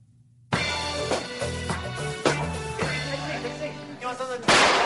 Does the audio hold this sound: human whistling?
no